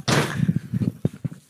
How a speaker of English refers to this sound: You just snap the chair.